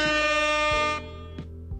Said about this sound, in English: Oh, the air horn is for the point.